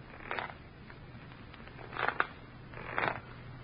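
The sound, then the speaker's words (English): A rocking chair creaks three times at a slow, uneven pace, each creak a short, raspy, fairly quiet groan over a low steady hum, with a small sharp click after the second. “On the fifth night of our wait, we heard the rocking chair creaking, creaking, creaking.”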